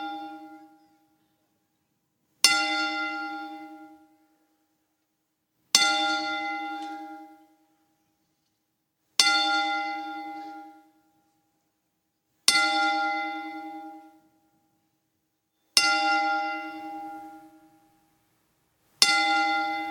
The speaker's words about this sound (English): Ladies and gentlemen, to honor the life of WWE Hall of Famer Bruno Sammartino, Would you please rise as we toll the bell 10 times?